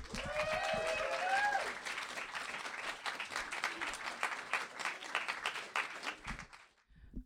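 Sustained audience applause from a sizable crowd, dense and steady, with a few whoops and cheers rising early on before the clapping thins and fades out near the end.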